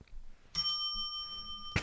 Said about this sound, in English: Can I get a bell on that?